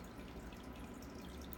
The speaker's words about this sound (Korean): 옆에서 물소리 난다고요? 맞아요. 저번에 보여드렸던 어항 물소리예요, 지금.